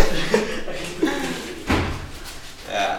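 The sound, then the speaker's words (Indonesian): A door is pushed shut with a solid thud midway through, preceded by a few lighter knocks and rattles of handling; faint voices murmur in the background. “Nutup pintu dulu biar...”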